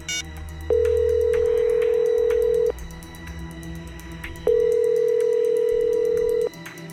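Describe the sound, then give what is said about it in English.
An outgoing call's ringback tone as a number is dialed from a compound in 115-degree heat: two long, steady electronic rings, each about two seconds, separated by a short pause, clear and fairly loud over a faint background hum. “The phone rings and rings.”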